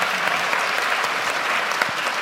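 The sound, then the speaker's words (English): Steady, dense applause from a panel discussion audience just after the panel is introduced and before the discussion starts, a continuous crackle of many hands clapping at an even level throughout, with no voices standing out. “We haven't even started yet and we're getting applause.”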